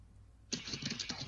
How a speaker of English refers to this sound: We can hear you typing, so you might as well just say it.